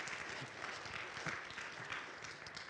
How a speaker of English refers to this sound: Yeah, you can give her a round of applause. That's a cool thing right there.